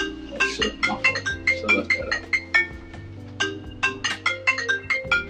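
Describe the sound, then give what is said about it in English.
A phone rings with a melodic ringtone for an incoming call, a quick sequence of bright, bell-like notes that repeats steadily over several seconds, clear with no one talking. “I thought you was gonna pick it up.”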